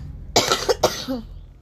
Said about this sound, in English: I'm going to get a good cough in, because I'm not going to stop again.